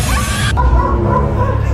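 A dog barks loudly, a short harsh burst trailing into a brief tonal whine over a steady low rumble.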